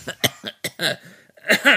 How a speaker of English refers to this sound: I still have this cough.